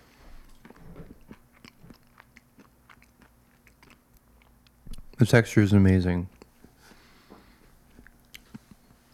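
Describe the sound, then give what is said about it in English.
Crunchy biting and chewing of a breakfast of yogurt with blueberries and granola, with small crackling crunches scattered throughout, briefly interrupted by a person speaking partway through. “I love a little chewy, a little soft, and a little crunch, all in one bite.”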